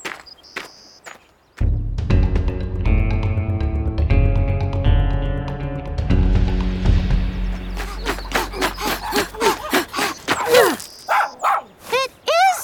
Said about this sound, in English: That's him now. I know it. Buster has a very distinct bark. He literally sounds like every other dog on the planet.